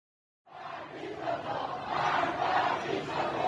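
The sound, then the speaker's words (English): Tens of thousands of Iranians protesting the regime in the streets, after Iran admitted its military shot down a Ukrainian passenger jet, roar after a moment of silence, many voices blending into a loud, sustained chant that swells and stays steady. “Following the admission by Iran that it was Iran's military that mistakenly shot down the Ukrainian passenger jet that killed dozens of Iranian citizens, tens of thousands of Iranians took to the streets early this week to protest the regime,”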